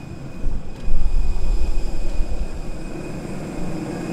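A steady, loud low rumble of jet engine noise fills an airplane cabin on a flight arriving in Namibia, with a faint high whine riding on top and no voices.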